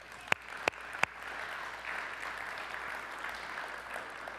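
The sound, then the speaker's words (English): Three sharp, loud claps ring out in the first second, then an audience breaks into steady, moderate applause that carries on evenly without any voices, clapping for people being saved through the preaching of scripture. “Yeah, we can clap about that.”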